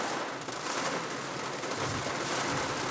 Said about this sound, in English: This rain is louder than I expected. Considering the fact that I didn't know it was gonna rain, it is raining, but I am still going to record because fuck it.